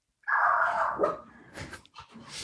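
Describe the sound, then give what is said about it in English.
A dog barks in a drawn-out, whiny tone, followed by a few shorter, breathy huffs. Moderately loud, with no one talking. “Man, I don't know if your dog likes that though.”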